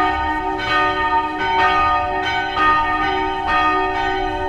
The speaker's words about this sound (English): Damn church bells, bro.